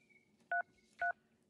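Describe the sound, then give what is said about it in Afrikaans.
Two short, loud electronic phone beeps, each a dual-tone keypress, sound about half a second apart as an alarm is set on the phone, over a faint steady background hum, with no talking. “Ek stel my alarm.”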